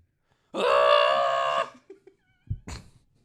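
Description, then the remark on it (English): A man lets out a loud, strained scream-sung note held for about a second, followed by a few short thuds and a brief rough vocal burst. “He just starts singing.”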